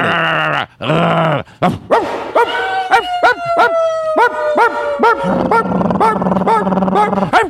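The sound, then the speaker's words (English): Several band members voice a loud, rapid string of mock dog barks and yelps, overlapping with a drawn-out howl-like whine running underneath, all energetic. “We do, probably the best one we do is dogs barking.”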